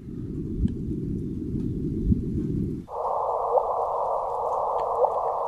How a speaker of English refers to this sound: Here, we're going to listen to the LIGO to signal. Okay, it doesn't actually make a noise. This is just turning the signal itself into a noise. Yes. So we got a couple. Hear that little thump?